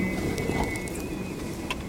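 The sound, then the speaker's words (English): A thin, steady whistling tone drones on without a break over a rushing, windy background, from whistles attached to trained homing pigeons flying back. “But of course they did come back, carrying their whistles behind them.”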